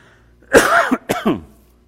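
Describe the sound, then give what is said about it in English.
A short, dry cough from a person getting over a cold bursts out, followed by a quick second hack and a rougher throat-clearing sound, all within about a second, then quiet. “Excuse me, I'm still getting over this cold, and I've got this little dry cough that won't go away.”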